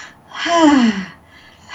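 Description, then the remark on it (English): A woman demonstrates deep breathing: a soft intake, then a loud, breathy exhale with a falling voiced sigh, and another quiet breath beginning at the end. Clear, with no talking. “She's going to be breathing, getting in touch with her breath, and breathing inhale and exhale while it's going on.”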